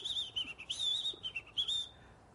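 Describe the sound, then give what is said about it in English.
A bright, high whistled birdsong of quick warbling phrases and trills, rising and dipping in pitch, with short pauses between bursts before a final sustained note fades out. No one speaks. “It stood right on his nose, and it sang to him.”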